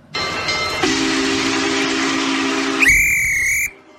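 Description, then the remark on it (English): A steam train sound effect: a loud, steady hiss of steam with a low droning tone, ending in a short, shrill whistle blast before cutting off. No one speaks. “All aboard the groove train.”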